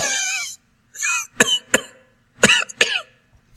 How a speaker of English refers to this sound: You hear a coughing noise from over here. The child that's over here in the red dress is coughing to herself.